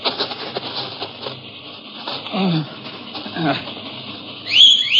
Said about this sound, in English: And in response to the whistle, the horses trotted up to him.